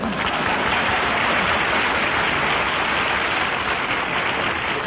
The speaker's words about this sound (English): Chuck, that applause is liable to tip off Cactus Face. I can't help it, Buck. I got relatives in the audience.